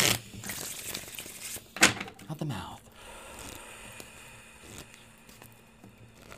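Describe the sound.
Soft papery rustling and flicking of a deck of tarot cards being shuffled, with a sharper snap near the start, while a quiet voice speaks over it.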